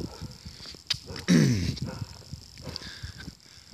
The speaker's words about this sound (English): If I seem a bit distracted, it's because I hear a dog barking